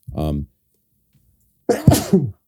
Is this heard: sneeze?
yes